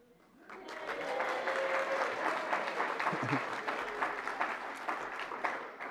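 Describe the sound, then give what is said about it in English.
An audience breaks into sustained, traditional applause on finishing a book of the Bible, dense clapping at a steady, fairly loud level throughout, with a brief murmur of voices mixed in partway through. “No clapping from over there?”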